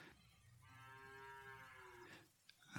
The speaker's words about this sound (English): Okay, and it must be time to get it going as the cow is signaling me to get the program started.